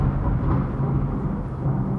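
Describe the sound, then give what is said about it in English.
A deep, continuous rumble of thunder from a storm outdoors rolls on steadily for the whole stretch, heavy in the low end with no sharp crack, and no one is talking. “Oh my gosh, that was so loud. It is a crazy storm out here.”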